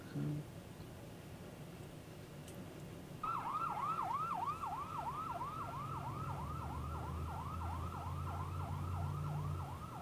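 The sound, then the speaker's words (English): An ambulance siren cuts in after a few seconds, yelping in rapid, evenly repeating sweeps, loud, with a low vehicle rumble underneath. “Have like a Burbs moment here where she's driving the ambulance.”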